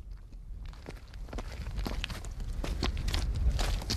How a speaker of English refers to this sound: This is the footpath. This is time-served stuff, this, what we're treading.